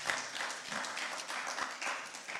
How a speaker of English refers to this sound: I think you should clap your hands.